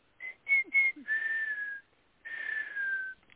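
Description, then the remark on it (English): An oriole's whistled song phrase: three short, clear notes, resembling the opening of Beethoven's Fifth Symphony, followed by two longer notes that each slide slightly downward, separated by a brief pause. It is distinct, with no talking. “The first three notes sounded like the first notes of Beethoven's most famous theme, starting his Fifth Symphony.”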